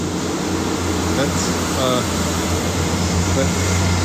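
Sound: train passing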